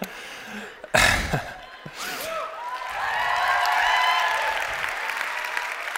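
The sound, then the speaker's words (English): A large audience applauds, the clapping swelling into a steady, dense wash after a sharp burst near the start, with a few vocal sounds and murmurs mixed in. “While you guys are clapping, like four or five of them just went out that back door.”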